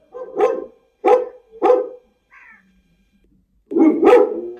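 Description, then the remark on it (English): A Gull Dong dog, protective of its family, barks at a stranger knocking on the door: three quick, deep, loud bursts, followed by a brief high whine, then two more heavy barks after a short pause. No one speaks. “If somebody will knock the door, I can show you the behavior of the Gull Dong.”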